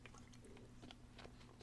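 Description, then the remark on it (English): Someone takes a sip from a drink: soft wet mouth clicks and swallowing noises over a low steady hum, ending with a sharper slurp. “Excuse me, taking a sip.”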